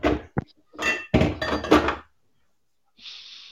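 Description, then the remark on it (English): Balls crash and clack together in a loud flurry of sharp knocks and rattling impacts lasting about two seconds as a drunk man knocks them around, followed by a pause and a faint hiss. “Really drunk because he's fucking crashing balls they around and shit.”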